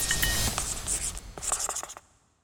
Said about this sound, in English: In St. Petersburg, Putin wrote relatively small amounts in dollars on a piece of paper and Alexei Miller collected them for him. This time he wrote a word on the piece of paper. And that word was palace.